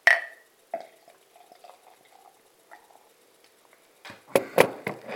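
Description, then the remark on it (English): A capped bottle of black beer is opened and poured into a glass, starting with a sharp opening pop, then quiet trickles before a loud burst of glugging, splashing liquid near the end. No one speaks. “Right, let's get this out into my glass and see what I think of it.”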